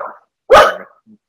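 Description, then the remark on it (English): A single loud, sharp dog bark, preceded by a brief softer yelp-like sound, with quiet afterward. “Dog has just eaten my flatmate.”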